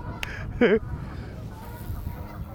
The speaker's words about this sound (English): Wonder what they say to one another. The geese? Yeah. Probably nothing nice. They're the meanest animals.